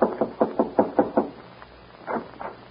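A close, firm knocking on a wooden door: seven quick, evenly spaced raps, a brief pause, then two softer knocks. No voices.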